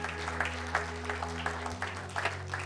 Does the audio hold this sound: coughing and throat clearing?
no